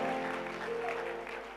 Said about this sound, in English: Give the Lord a wonderful clap of praise and thank you.